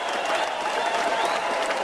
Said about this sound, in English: Oh, that's generic applause.